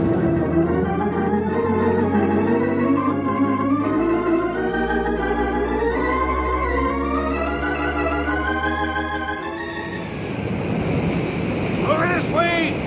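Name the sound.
oil gusher erupting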